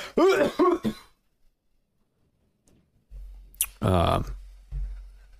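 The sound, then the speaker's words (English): A person hacks out a quick cluster of harsh coughs and throat-clearing, goes quiet for a couple of seconds, then lets out another rough, strained burst. “I legitimately am lightheaded right now from that coughing.”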